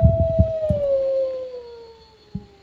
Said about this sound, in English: Go ahead, you can talk while it's playing. No, I'm not talking while a wolf is... That's the werewolf. Giving me the werewolf and the witch.